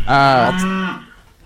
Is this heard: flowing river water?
no